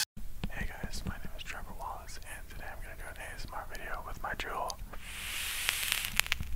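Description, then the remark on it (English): A voice imitates the crackling of a cloud-chucker vape held right up against the microphone: breathy, whispery mouth sounds with scattered sharp crackles and pops, ending in a longer airy hiss like an exhale. “She'll put like the vape right up to the mic, and for some reason, I just enjoy like the crackling of that shit.”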